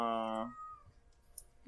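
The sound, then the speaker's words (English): A single loud, drawn-out cat meow, sustained briefly and then trailing off in a falling wail, followed by quiet background noise. “Even the cat god cries.”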